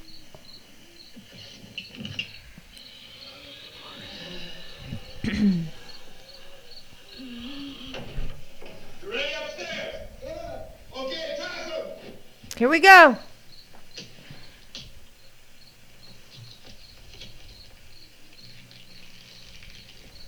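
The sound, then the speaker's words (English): Crickets chirp steadily in the background the whole time, a thin high pulsing trill, while a person talks briefly and a few louder sounds cut in over it. “I can hear the crickets clear as day.”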